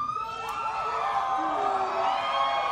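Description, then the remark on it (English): A large Comic-Con crowd cheers and applauds a speaker in costume, in character as Grindelwald. The clapping is loud and without pause, a dense roar topped by rising whoops and shouts throughout. “The great gift of your applause is not for me, but for yourselves.”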